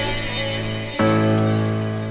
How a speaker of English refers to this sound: It's raining.